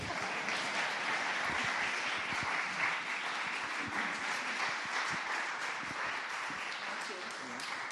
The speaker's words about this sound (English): Might need to keep clapping until she gets up here.